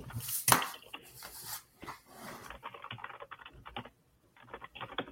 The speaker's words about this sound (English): I hear typing going on. Oh, I'm responding to an email. No, you're fine. You're fine.